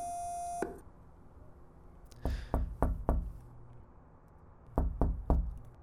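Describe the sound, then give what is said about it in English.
A brief electronic buzzing tone sounds for about half a second as the button of an intercom box at a lighthouse is pressed, followed by two groups of hard knocks, four and then three, with quiet pauses between. “Also an intercom box. Pressing the button.”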